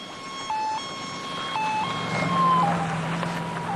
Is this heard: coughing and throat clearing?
no